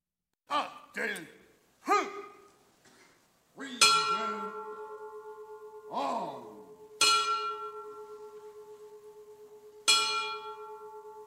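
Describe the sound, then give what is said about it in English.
A memorial bell, the final bell for police officers and a paramedic who died on duty, tolls three slow, loud strikes about three seconds apart, each ringing out with a long, humming decay. Breathy, sighing vocal sounds come before and between the strikes. “The final bell tolling for the officers and the paramedic who gave their lives.”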